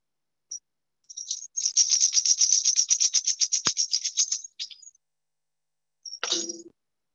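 A high, bright bell rings in a rapid trill of strikes for about three seconds, then stops. A short, clattering burst follows, with no voices present.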